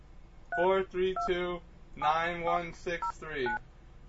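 A voice imitates a string of phone touch-tone beeps, as if dialing a phone number: about six short, pitched bleeps in quick, uneven succession, fairly loud, with no other sound around them.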